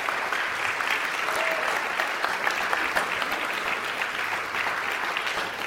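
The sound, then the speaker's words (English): A steady round of applause from an audience for the Science of Mind 400 ministerial graduates, dense overlapping clapping that holds at an even, fairly loud level for several seconds without any voices breaking through. “So let's round of applause for everybody.”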